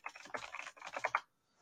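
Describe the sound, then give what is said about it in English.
Rapid typing on a computer keyboard, a quick flurry of overlapping key clicks for just over a second before it stops and falls silent. “I'm typing here.”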